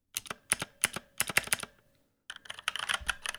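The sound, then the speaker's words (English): Crisp, clicky mechanical gaming keyboard presses, loud: a few distinct spaced clacks as keys are pushed down, a brief pause, then a rapid burst of fast typing. No voices. “So what definitely that is that's that little ribbed hump thing clicking over, and you can hear it as I'll push down this key.”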